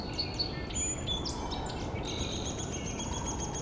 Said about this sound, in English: There's a downy woodpecker.